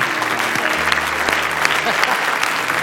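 An audience claps steadily for about three seconds, a dense, even patter of many hands with a few sharper individual claps standing out, with faint low murmuring underneath.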